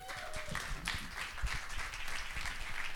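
Steady audience applause welcoming speakers at an event about the Penn Prison and Justice Writing Program, a dense wash of many hands clapping at once, sustained and fairly loud for the whole stretch with no one speaking over it.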